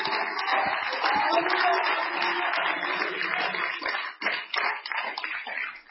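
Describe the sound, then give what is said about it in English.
A church audience claps steadily and loudly in praise to the Lord, with overlapping voices shouting and cheering to God, a dense wash of applause and raised voices that thins into scattered claps toward the end. “Why don't you give the Lord another hand clap of praise?”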